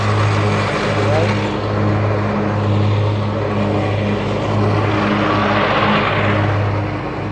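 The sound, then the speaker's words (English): A lawn mower engine, run by city workers mowing the grass on the Jefferson Davis Parkway neutral ground on a gray day, drones steadily throughout, a loud low hum with a buzzy rough edge that swells and eases a little as the mower works across the grass. “You can hear the sound of the mower there.”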